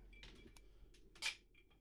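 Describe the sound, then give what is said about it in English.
Glasses of tequila on the rocks clink together in a toast: a few light, quick taps followed by one brighter, ringing clink, all fairly quiet with no voices. “So, let's do a cheers to this.”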